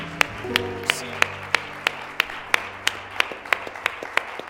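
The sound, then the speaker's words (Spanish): A church audience claps for God together in a steady, even rhythm, with over a dozen sharp claps alongside sustained keyboard or organ tones in the background. “Le podemos dar un aplauso al Dios rico en misericordia.”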